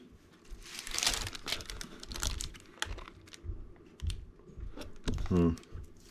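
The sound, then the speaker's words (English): Crisp crinkling and tearing of a small plastic hot sauce packet, a run of sharp rustles and rips over several seconds, with a brief voice sound near the end. “Fire packet in there.”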